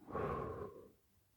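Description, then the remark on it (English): A single airy breath, soft and steady for under a second, then fading into quiet: breathing in through the nose and out through the mouth. No one speaks. “Repeat this, breathing in through your nose and out through your mouth, letting your body naturally relax and fall into a rhythm.”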